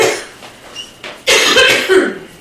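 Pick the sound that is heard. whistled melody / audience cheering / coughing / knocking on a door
coughing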